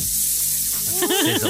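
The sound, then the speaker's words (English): A steady, loud barbecue sizzle hisses throughout, with brief warbling tones rising over it near the end. “Sizzle.”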